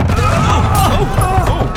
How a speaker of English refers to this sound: Is that cannon fire? Oh, no. No!